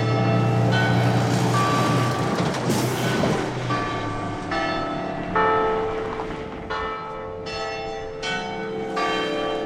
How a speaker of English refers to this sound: Another audio recording tip, hang out by church bells. All right, so, they're done? I'm walking away from the church bell.